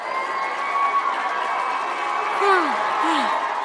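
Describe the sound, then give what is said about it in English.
A big hockey arena crowd roars and cheers steadily after Jeff Carter scores the first goal for the Penguins, loud and dense throughout, with a couple of short descending whoops rising out of the din near the end. “And we watched the game, and we watched as Jeff Carter skated down the ice and scored the first goal for the Penguins. And the crowd went nuts. It sounded something like this.”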